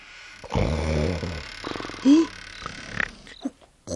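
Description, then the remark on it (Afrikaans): An elderly couple, a grandfather and grandmother, snore loudly with a low, rattling rasp: one long drawn-out snore followed by shorter snorting grunts and breathy wheezes, with no talking. “Hulle snork asof hulle betaal word.”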